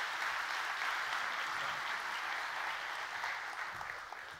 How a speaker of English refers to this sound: All right. Well, let's give them another good hand clap. Thank you guys so much. Love you guys.